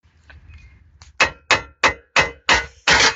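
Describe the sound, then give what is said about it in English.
Metal hammering on a car: six loud, sharp clanging strikes in a steady rhythm, each ringing bright before the next, after a few faint taps at the start. “You caught me just fixing my car.”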